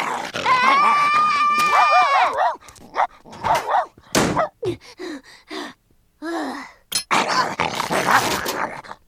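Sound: dog growling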